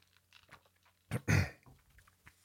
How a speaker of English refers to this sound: Wait, let me just drink a little water.